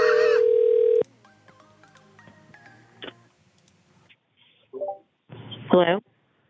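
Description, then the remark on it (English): A steady electronic phone tone sounds for about a second, followed by quiet clicks and short beeps of buttons being pressed to call someone back, then a couple of brief warbling tones on the line. “Calling him back.”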